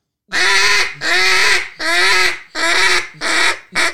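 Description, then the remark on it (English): A duck call blows a lonesome hen sequence: five long, drawn-out quacks, loud, each a little shorter than the one before, with brief pauses between and no voices. “just a really long drawn out quack.”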